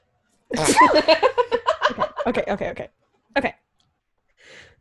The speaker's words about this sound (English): So, I'm going to sneeze.